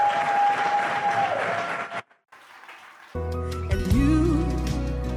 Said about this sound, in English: Clap for Jesus, everybody.